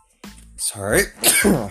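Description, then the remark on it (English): A single loud sneeze: a short voiced wind-up, then a sharp breathy burst that trails off, with no talking around it. “Sorry, I just had to, like, sneeze.”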